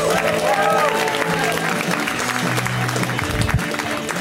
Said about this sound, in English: Would you like to see more great comedy? Please, a wild round of applause.